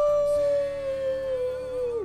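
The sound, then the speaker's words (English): A person lets out a single sustained, fairly loud howl, holding one steady note for about two seconds before it dips and trails off at the end, a human voice imitating a wolf. “I'm Howling.”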